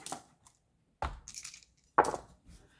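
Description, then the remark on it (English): Three eight-sided dice rattle and clatter across a hard dice tray, one roll after another about a second apart, each a short burst that quickly settles. They are rolled for a Basilisk's hit points in a tabletop game. No voices. “So I'll roll that. I've got 3d8s.”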